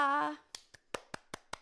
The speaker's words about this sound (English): I'm clapping for myself because that's what I do in my self-friendship practice.